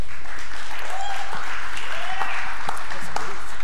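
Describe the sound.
A crowd applauds steadily as a speaker brings a friend up to answer questions: a dense wash of many hands clapping at once that holds fairly loud for several seconds, with a few faint voices mixed in beneath it.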